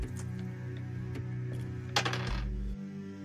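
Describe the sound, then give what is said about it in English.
A short clatter of dice tumbling across a surface, rolled for a stealth check, a quick burst of rattling clicks over a steady low hum, with no one speaking. “I got a 93 on the dice, so that's a lot of negative SL.”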